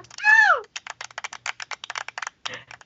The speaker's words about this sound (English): That was a clap sound effect, by the way. I was like, is someone typing? Nope. Yeah. That was a clap sound effect.